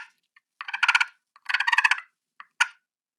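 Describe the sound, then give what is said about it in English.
Turkey purrs and putts, a contented call made while feeding: two soft rolling, fluttery trills followed by a few short, sharp clucking notes, moderately loud with quiet gaps between them and no talking. “Then there's the purrs and putts. I'm real contented. I'm feeding over here.”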